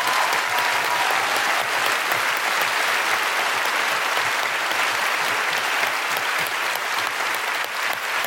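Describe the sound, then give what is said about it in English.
Sustained audience applause for Sarah Pascoe, Aisling B, Josie Norton and Steve Alley, a dense, even wash of many hands clapping at steady loudness for about eight seconds, with no voices standing out. “Big round of applause for Sarah Pascoe, Aisling B, Josie Norton, and Steve Alley.”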